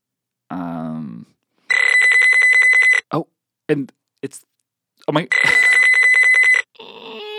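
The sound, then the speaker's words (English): A telephone rings in two loud, trilling electronic bursts separated by a pause, with brief vocal sounds and short noises in between and a voice at the start. “It's the Rone phone. It's the JK Rone phone. Hello?”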